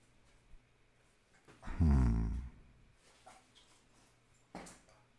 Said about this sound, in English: And my dogs are going crazy now.